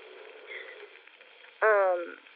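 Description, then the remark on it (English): A thin, hissy radio-like murmur, then a sudden loud burst of buzzy, garbled voice lasting about half a second before fading back into the crackling background: a man's speech on a recording coming through as distortion instead of words. “But when he speaks, his words aren't actually being recorded. It comes through as some type of distortion.”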